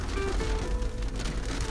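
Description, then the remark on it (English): Steady, dense rain pours down in a continuous hiss with a low rumble, constant and fairly loud throughout, with no voices. “I think it's going to start raining hard again.”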